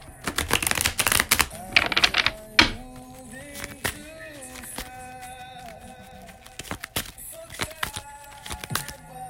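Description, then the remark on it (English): Tarot cards being shuffled: a dense flurry of crisp, papery riffling snaps in the first couple of seconds, then scattered softer taps and flicks, over a faint steady tonal background. “One more shuffle.”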